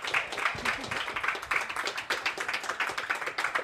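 A round of applause from a group: many overlapping hand claps forming a dense, crackling patter that stays fairly steady and loud for about four seconds.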